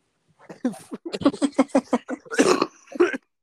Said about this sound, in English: No, everyone's going to be yelling at you because you keep fucking coughing.